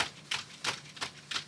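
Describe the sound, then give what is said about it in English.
Keyboard typing, a handful of sharp clicking keystrokes at an uneven pace with brief gaps between them, over a quiet background with no voices. “That's me typing.”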